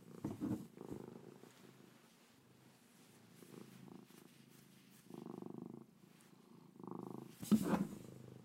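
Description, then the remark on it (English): A female domestic cat purrs loudly into a microphone, a steady low rumble swelling and easing in rhythmic waves with each breath, with no talking over it. “Mochi, purr into the mic.”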